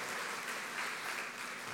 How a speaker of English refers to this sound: Come on, we should give the parents a hand clap in here. Praise the Lord. Love you, parents.